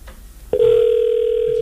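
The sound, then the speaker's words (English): After a brief quiet moment, a loud, steady electronic telephone tone starts abruptly and holds unbroken to the end, a ring signal heard over a phone line while calling someone back on the line. “It's ringing, okay.”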